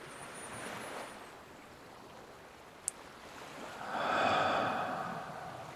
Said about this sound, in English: The breath in is slow and gentle. The belly slowly rising and letting the breath go. Breathing.